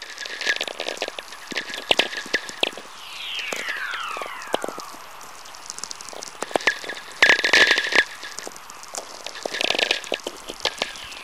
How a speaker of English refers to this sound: Well, at this very moment, I've got my headphones on. These whistlers are really coming in big streams now. There's just one whistler kind of merging into the other, all slowly descending in pitch. Oh, these are so great.